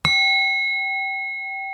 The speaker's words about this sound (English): So there's going to be a bell throughout. And each time the bell goes off, you're either going to be taking an inhale through the nose or an exhale out the mouth. And I'll play that bell now.